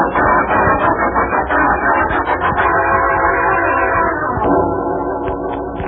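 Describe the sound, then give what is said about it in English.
A train rumbles in loud, arriving at Los Angeles Station, its horn blaring in long sustained blasts over the steady clatter of the cars, with no voices heard. “The message here says, Kidnappers, Los Angeles Station, 11:43.”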